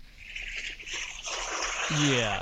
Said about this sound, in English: That wave almost got that one. Almost got me. As I get farther and farther out on these rocks, the waves are getting a little bit higher, and so.